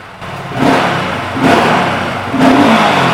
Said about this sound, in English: That pea shooter exhaust, it really does sound quite good considering that it's got to be Euro 5. It's not loud, but it's got a nice rich pop to it.